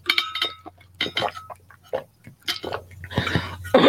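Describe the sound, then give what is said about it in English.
Someone takes a drink of water: a glass clinks and knocks several times amid short squeaky, sloshing bursts and gulps, irregular and moderately loud, with no talking. “sorry, let me get some water. 1 second.”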